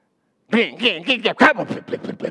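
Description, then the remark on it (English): A voice imitates a neighbor's Harley-Davidson motorcycle engine from across the street: a run of loud, throaty revving bursts that rise and fall in pitch, then a quicker stuttering rumble as it trails off. “That's a Harley Davidson, by the way.”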